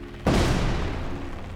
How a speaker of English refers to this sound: Then, the first of several dozen explosive charges went off.